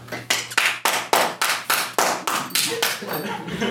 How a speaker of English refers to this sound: Thunderous applause. Everyone claps.